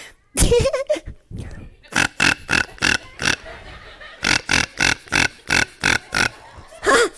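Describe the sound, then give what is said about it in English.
A voice imitates pig grunts and oinks to call pigs, starting with a couple of drawn-out snorts, then a quick, steady run of about a dozen short, loud grunting bursts. “This is how you call the pigs, like this.”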